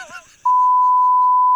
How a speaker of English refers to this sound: But he's still got to beep it.